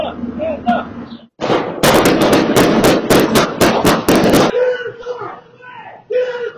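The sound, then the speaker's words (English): A rapid volley of more than a dozen loud gunshots cracks out in quick succession for about three seconds in a shootout between L.A. County Sheriff's deputies and a kidnapping suspect at an apartment complex parking lot, filmed by a resident, with people's voices heard before and after the burst of fire. “I don't know who these people are, but gunshots just started ringing through the complex.”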